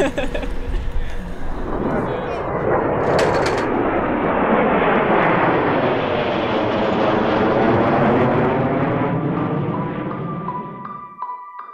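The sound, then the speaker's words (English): Airplane engines start up, a loud, rushing roar with a whine that climbs and holds steady for several seconds before cutting off abruptly. “Start turning on the planes.”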